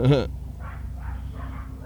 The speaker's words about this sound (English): Yeah, your dogs are way loud.